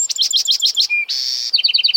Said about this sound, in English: Clearly, the birds know something is up. Listen to that Buick's wren belt it out.